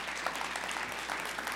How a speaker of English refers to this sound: Question. Go ahead, give the Lord a round of applause.